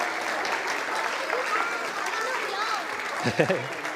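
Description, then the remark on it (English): A church audience applauds its young people steadily, a dense, even wash of clapping that holds for several seconds, with a few cheers and voices rising near the end. “Can we give our young people another clap, because they've done a great job?”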